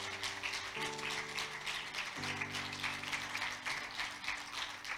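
An audience claps continuously, a dense, steady wash of many hands, while sustained low keyboard chords shift underneath. No one speaks.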